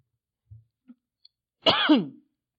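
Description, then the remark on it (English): A single harsh, voiced cough from a speaker bothered by something in the air bursts out fairly loud, preceded by a few faint small throat sounds, with quiet silence on either side and no talking. “Now I'm going to start coughing.”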